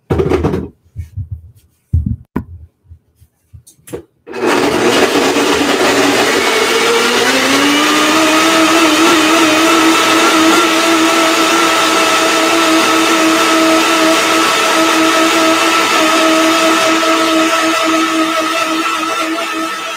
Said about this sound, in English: So I just drain those and I threw those in my blender with the pumpkin and oil, and now I'm just gonna blend these together.